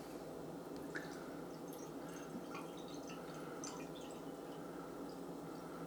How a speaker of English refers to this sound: So let's go ahead and get it open, get it into a glass, and see what I think about it. Holy cow. Okay, there we go. Weird can.